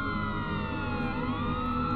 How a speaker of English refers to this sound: The sound, however, was coming from an area beyond this golf course, so the children once again made their way closer to the sound, with each step leading to the odd siren becoming louder and louder and louder.